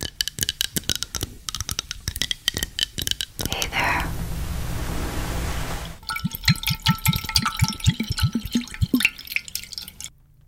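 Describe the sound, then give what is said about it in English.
A drink is poured in a steady hiss for a couple of seconds, between stretches of quick, crisp tapping and clicking sounds. “Listeners say they feel a tingling sensation as they hear recordings of ambient sounds like tapping, whispering, and drinks being poured.”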